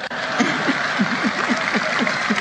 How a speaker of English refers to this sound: That's scared applause right there.